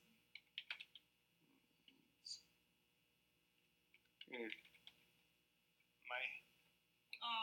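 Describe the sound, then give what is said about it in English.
Crisp keyboard typing in short irregular bursts of clicks, with pauses between, and a few louder noisy bursts and faint voices later on. “I'm just not good at typing.”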